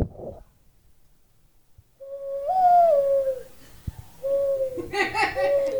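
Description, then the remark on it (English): A man's voice mimics a bird call with warbling, whistle-like hoots that rise and fall, followed by bursts of laughter. “make that bird sound that you do.”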